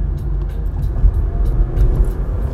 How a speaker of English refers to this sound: Uh-oh, y'all hear that engine. Y'all hear it purring up a little bit.